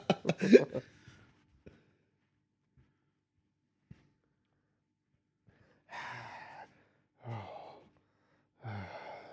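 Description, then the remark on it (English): A voice does exaggerated heavy breathing, imitating a creepy phone caller: a sharp gasp up front, a quiet pause, then three long, rasping breaths in a slow, steady rhythm. “The heavy breathing of Morbius”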